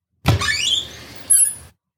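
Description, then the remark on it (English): A woman opens cupboard doors to look for a file: a soft clunk, then a drawn-out rising squeak of hinges, followed by a second brief, higher-pitched squeak before it stops. No one speaks. “As she opened the cupboard doors, I hoped she found the file.”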